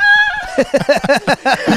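chicken clucking sound effect

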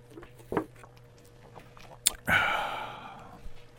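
sipping tea

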